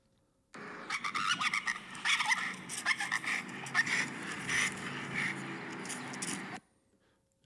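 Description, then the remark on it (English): A big blue nose pit bull, a highly reactive dog, shrieks and screeches frantically while lunging amid harsh scuffling and rasping noise, a continuous, agitated burst lasting about six seconds, fairly loud, with no talking. “But like typical pity, lunging, screeching, whatever, sees things, just goes absolutely haywire, yeah.”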